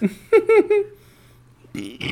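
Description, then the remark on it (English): A loud, drawn-out burp with a few voiced pulses rumbles for about a second, followed by a brief pause and then a person starting to talk. “Ooh, oh my goodness, I needed that fucking burp so goddamn bad.”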